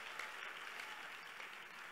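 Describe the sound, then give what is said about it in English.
An audience claps their hands together, a steady dense wash of many overlapping claps at an even, sustained loudness with no voices rising above it. “Clap your hands for my faith was not shaking.”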